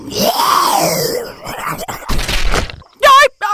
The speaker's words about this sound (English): Almost immediately, you hear a loud snarling noise, and then a wet slap and some crashes of branches.